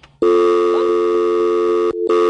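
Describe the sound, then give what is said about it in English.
A loud, steady telephone line tone after an accidental hang-up caused by pushing all the phone buttons at once hums continuously for about two seconds, with a brief dip near the end before resuming. No one speaks over it. “I get all excited about pushing the phone buttons, and I push them all at the same time.”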